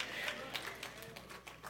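An audience applauding as a sermon ends: soft, dense clapping with quick overlapping claps that runs steadily for the whole moment, fairly faint, with a low murmur of voices mixed in underneath.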